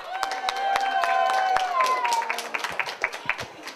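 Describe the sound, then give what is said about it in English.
Audience applause for the MC at the SatsuCon Masquerade: a dense patter of many hands clapping with cheering voices mixed in, then thinning into scattered individual claps toward the end. “All right, so give a round of applause to the MC who actually cosplayed.”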